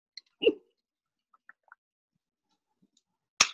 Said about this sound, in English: Let me take a little sip on this.